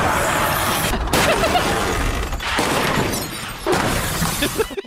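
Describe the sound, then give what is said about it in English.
A loud car crash of two Priuses, a Lyft car hitting the other: a sustained roar of crunching metal and shattering, tinkling glass that surges in several waves over about five seconds before cutting off abruptly. “That was audio from the accident.”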